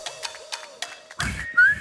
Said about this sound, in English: I can't do the whistle.